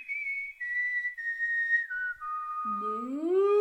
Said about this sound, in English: I heard my … whistle a refrain from West Side Story through the rafters. I whistled back.